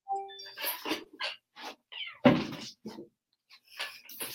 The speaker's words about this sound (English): My cat is blowing shit up on my desk, so apologies for that.